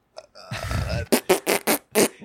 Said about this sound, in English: Is that me coming on the podcast? I think that's me farting at my like terrible ad read idea.